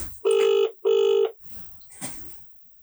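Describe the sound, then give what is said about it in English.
Two loud, steady ringing tones in a quick double burst, the classic ringback heard down a phone line while an outgoing call connects, followed by faint rustling and line noise. “Oh, it's ringing.”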